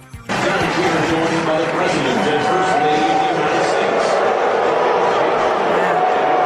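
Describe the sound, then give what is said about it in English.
A large crowd boos loudly and without a break, a dense, sustained wall of low jeering voices that starts abruptly and keeps going at full strength to the end. “That's seriously booing. This went on for ages.”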